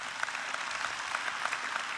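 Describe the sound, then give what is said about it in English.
A church audience clapping for themselves steadily, a dense wash of overlapping handclaps with no voices on top, holding at an even, moderate level throughout. “Come on. Come on. Clap for yourself.”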